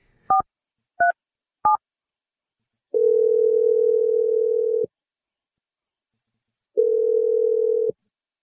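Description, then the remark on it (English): Three quick touch-tone keypad beeps, then the steady purr of an outgoing call from the radio show Brooke and Jeffrey in the Morning ringing twice, each long ring separated by a pause of silence. No voices. “I will call her for 4 straight days until she picks up the phone.”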